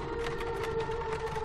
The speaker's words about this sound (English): Then a dog began to howl somewhere far down the road.